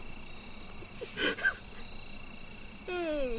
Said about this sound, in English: I know, they're probably like when we're not talking, when there's a break, they can hear the crickets and cicadas.